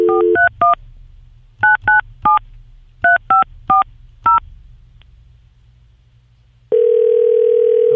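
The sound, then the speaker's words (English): A string of touch-tone beeps as a phone number is punched in on a cell phone, short dual-pitched tones in irregular bursts, followed by a steady ringing tone on the line. No one speaks. “Just dial it as you normally would. Dial it as if it was a local call.”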